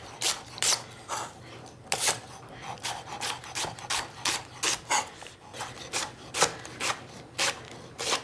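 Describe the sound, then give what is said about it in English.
A knife thinly slices leeks, already cut in half lengthwise, into half moons on a cutting board in a steady run of about twenty crisp, rasping strokes, each a short bright scrape, with no voices. “All right, so I'm gonna take my leeks and I'm just gonna slice them thinly into little half moons, since I've already cut them in half lengthwise.”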